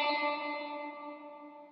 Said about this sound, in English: And we got a lot of reverb.